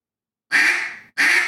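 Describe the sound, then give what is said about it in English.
A loud, raspy quack from a reed duck call, followed right away by the start of a second quack that is cut off. No voices are heard. “I'm letting that reed rattle is what I'm doing. Okay, do a quack and raspy. One quack.”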